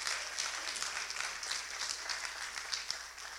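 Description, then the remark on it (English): An audience, including kids, claps steadily for a few seconds, a dense patter of many hands at even loudness with no voices over it. “You know who I got more claps from right then?”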